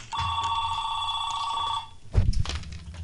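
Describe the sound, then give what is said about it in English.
A telephone at a radio station rings in one sustained electronic trill lasting nearly two seconds, clear, followed by a clunky handling noise as the receiver is picked up. “Let's see who's on the phone.”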